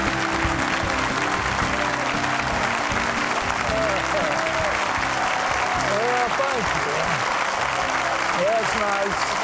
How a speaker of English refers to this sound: and I know why everybody's applauding.